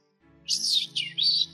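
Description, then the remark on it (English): A high, warbling whistle in three quick phrases, its pitch sweeping up and down in a chirpy, bird-like way, with no talking over it. “So wait, he whistled and then said that?”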